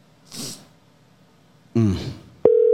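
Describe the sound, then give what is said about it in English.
A steady electronic telephone tone cuts in loudly at the end, following a breathy burst and a short vocal grunt, like a call line sounding with no one picking up. “He's probably not going to answer. Nobody answers you.”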